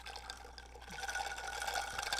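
A quiet sip of a Tom Collins cocktail, a soft wet slurping of liquid that runs steadily for about two seconds over a low background hum, with no one talking.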